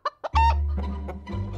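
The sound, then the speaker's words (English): Chickens cluck in a quick burst of short, sharp calls, followed by a busier stretch of overlapping clucks and squawks over a low, steady rumble, in a chicken store. “He'd answer the phone and they'd probably hear chickens clucking in the background.”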